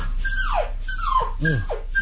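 A young puppy whimpers in a run of high, descending whines and squeaks, several cries in quick succession, fairly loud, with no barking and no talking.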